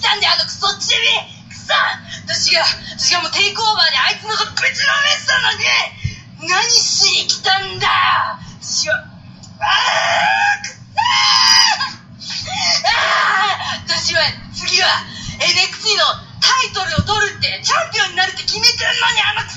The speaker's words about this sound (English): That was like the most precious bunch of angry yelling I've ever heard.